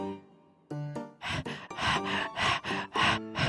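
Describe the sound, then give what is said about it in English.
Heavy, rapid breathing, a run of loud, breathy gasps in a steady rhythm, some of them voiced like panting moans, following a low drawn-out sigh. “I'm breathing heavy. I'm wiped out.”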